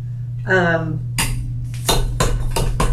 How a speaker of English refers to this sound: So I have a couple glasses that I put some ice in and already have some fresh fruit. So we can just pour our white sangria ice over that. It's a little melty.